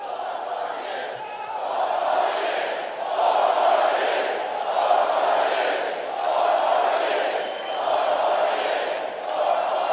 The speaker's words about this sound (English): And as you can tell, the crowd was excited yelling four more years. But did you hear at the end what of that? Somebody shouted out in the crowd, you're the best president ever.